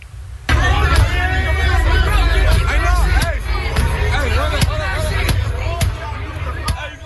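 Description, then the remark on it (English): A loud, dense crowd hubbub of many overlapping shouting voices, continuous, punctuated by several sharp bangs and thuds throughout: a huge crowd at a street takeover sideshow at the intersection of Central and Alondra, smashing the windows and doors of a gas station. “A huge crowd taking part in a sideshow turned on a nearby gas station, smashing windows and doors until they got in and then looted the place.”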